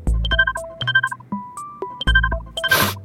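A phone rings during an outgoing call with a bright, melodic electronic ringtone, its short chiming phrase repeating twice, loud with no voices, ending in a brief burst of hissy noise.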